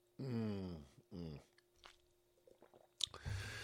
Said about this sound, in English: Let me take a moment to drink some water here and clear my throat.